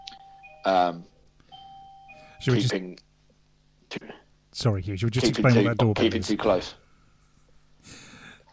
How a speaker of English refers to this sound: The doorbell in the background you're hearing is the doorbell to my shop, which is next door. So my partner's shop, it's not my shop. And it rings every time someone comes busy. In or goes out.